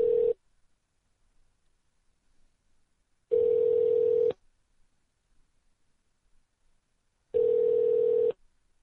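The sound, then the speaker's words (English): A phone line at the Seminole Hard Rock Hotel and Casino rings through to an extension while a call is transferred: three steady, buzzy tone bursts, each about a second long, spaced by roughly three seconds of silence, with no voices. “Please hold on while I try that extension.”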